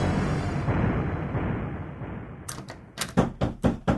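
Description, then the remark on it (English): After a stretch of steady rumbling noise, someone pounds on a locked door: about half a dozen loud knocks in quick, slightly uneven succession. “unlock this door. You've got to let me in.”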